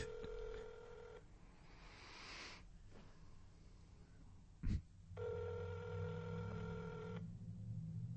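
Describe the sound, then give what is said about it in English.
A phone line on speakerphone, calling a New York (646) number, plays steady dial and ringback tones with bursts of noise between them, a sharp click in the middle, then the tone resumes; no one speaks. “put it on speakerphone”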